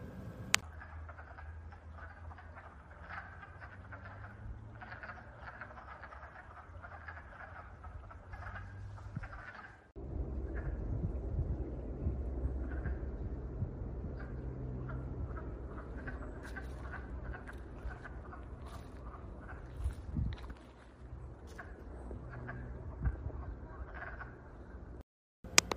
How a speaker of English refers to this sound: What you are about to hear is what the frogs sound like during the daytime, which is a little different than what they sound like during the nighttime.